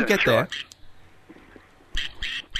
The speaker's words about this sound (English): Hang on. There's a duck. A duck? A duck. I think Jess McGuire's turned up with her pet duck.